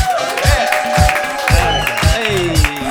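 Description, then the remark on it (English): The studio audience of the comedy panel show Just Another Panel Show claps and cheers steadily, a dense wash of applause running the whole time beneath the show's upbeat musical theme with a rhythmic low beat and sustained tones. “You're going to have to keep clapping for the 30 seconds that this thing goes for, but we can all talk over at the laugh house.”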